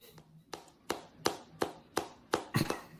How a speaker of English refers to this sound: I got the claps. You know what I'm saying? I got the claps on the joints.